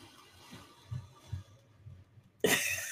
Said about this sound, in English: But I don't think anybody else is in here. Coughing, kind of creeping me out.